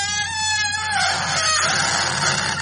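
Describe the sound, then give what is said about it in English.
A live turkey squawks loudly as it is stuffed with stuffing for Thanksgiving, a strained, warbling call that rises and wavers for a couple of seconds, with no talking and a low steady hum underneath. “But, Mom, I mean, shouldn't you have killed the bird dead before you did all that?”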